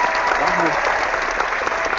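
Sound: audience clapping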